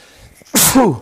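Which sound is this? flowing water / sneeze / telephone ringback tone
sneeze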